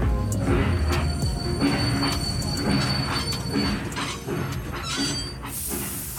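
A departing train rumbles steadily along the rails, with thin high-pitched wheel squeals running over the heavy low clatter and a burst of hiss at the end; no voices.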